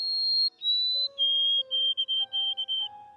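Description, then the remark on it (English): A male white-throated sparrow sings clear, pure whistled notes, a song played to female white-throated sparrows in breeding season in a study: a long high tone, a slightly lower one, then a run of short repeated notes in a steady rhythm, with no voices. “Female white-throated sparrows, hormonally charged for breeding season, were played songs of male white-throated sparrows.”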